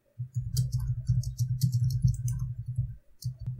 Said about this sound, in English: Oh, I see where the typing is going.